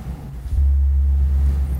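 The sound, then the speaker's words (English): A motorcycle engine running downstairs gives a low, steady rumble that drones on, swelling after a brief quieter start and holding a deep, constant hum, with no voices present. “No, it's the motorcycle. Oh, downstairs.”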